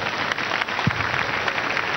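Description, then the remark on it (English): An audience applauds, with many hands clapping in a dense, steady crackle that holds at an even, fairly loud level for the full two seconds, with no voices. “Let's clap for them.”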